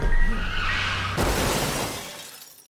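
An ice cream truck's tires skid with a rising squeal and engine rumble, then a sudden loud crash of shattering glass and metal that clatters and fades out over a couple of seconds.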